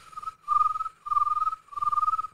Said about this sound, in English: So now the sun has gone down. The moon has come up. We got our crickets.